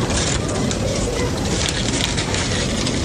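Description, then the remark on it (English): Continuous crinkly rustling of a sports commentator digging through a bag on air during a match broadcast, a dense, steady crackle of noise that holds at an even loudness for about three seconds with no talking. “You hear him rustling through a bag here?”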